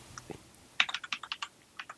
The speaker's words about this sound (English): Get on your clicky keyboard. All right. I got you. Hold on.